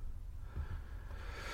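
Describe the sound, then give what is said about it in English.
A single short hiccup, a quick involuntary gulp of breath, soft and brief against a low background hum, with no talking. “Sorry, I've got hiccups while I'm trying to do the questions.”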